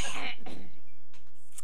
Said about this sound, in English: Clear your throat